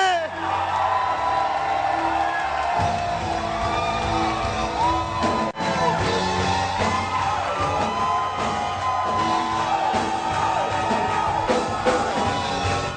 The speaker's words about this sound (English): Now with a shout. Let's invite our mother with a big round of applause and with a big shout. Glory!